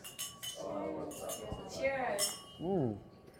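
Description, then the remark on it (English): Several bright glass clinks ring out, a quick cluster at first and another a moment later, as people's voices chatter underneath in a toast with glasses of whiskey. “Cheers to that. Cheers to all of you guys.”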